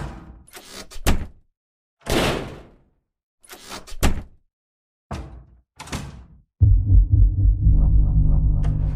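A run of about six bangs of doors flying open in the rooms of a church, separated by short silences, each with a lingering echo, then a loud sustained rumbling drone takes over.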